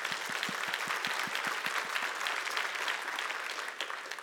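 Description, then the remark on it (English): A crowd claps steadily for about four seconds, a dense, loud patter of many hands, with a faint regular beat running through the first half before easing slightly at the end. “I'll clap for that.”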